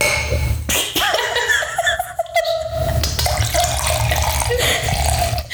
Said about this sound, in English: Don't pour the whole bottle.